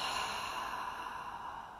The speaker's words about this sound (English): So this is something that we naturally do multiple times throughout our day, but it's also something that we can harness to consciously bring a state of relaxation. So it is just breathing in, sipping in a bit more, long, slow exhale.